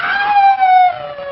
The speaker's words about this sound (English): That cry! A wolf! An animal! Why does it sound like Dracula?